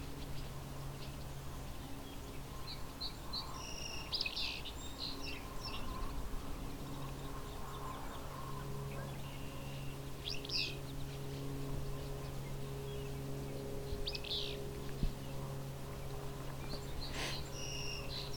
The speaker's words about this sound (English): There's also some barn swallows going by here.